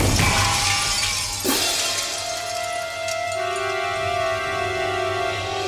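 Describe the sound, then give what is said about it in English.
A bomb explodes with a sudden loud blast, glass shattering and crashing as a nearby store window is smashed, then a high, steady ringing hum lingers for several seconds afterward. No one speaks. “As the bomb exploded, Ernest jumped inside the smashed window of a nearby store.”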